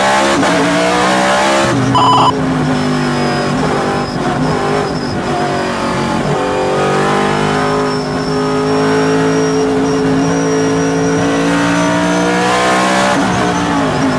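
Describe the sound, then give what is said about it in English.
An older generation Camaro roars loudly and steadily, its engine note climbing and dipping as it accelerates, with a thin high whine running over the rumble and no talking. “That's an older gen Camaro.”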